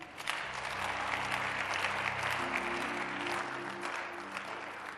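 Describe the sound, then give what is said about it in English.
A church audience claps steadily and loudly for about five seconds, a dense wash of many hands, with sustained organ or keyboard chords holding underneath. “You didn't clap.”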